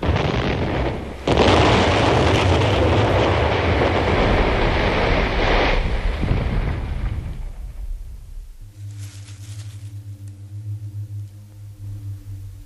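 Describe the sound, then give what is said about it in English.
A jumbo jet crashes after fires on all its engines, with a loud, sustained roaring rumble and a sharp surge early on. After several seconds the roar fades into a low, steady mechanical hum. No one speaks. “None of you have a shred of evidence to support your claim that it was the Exon-strain plants in the climatorium that caused the jumbo to crash.”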